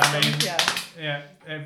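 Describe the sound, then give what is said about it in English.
A brief burst of a few people clapping, quick and uneven, as a round of applause after a game of Two Truths and a Lie, mixed with voices calling out and a drawn-out spoken exclamation as the clapping fades. “Round of applause.”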